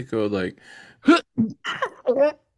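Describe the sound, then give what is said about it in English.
A voice imitates a stifled, silent sneeze: a strained voiced catch, a breathy hiss, then a few short, pinched, squeaky bursts, with no actual words. “Yo, what's up with the people that sneeze but like they don't make noises?”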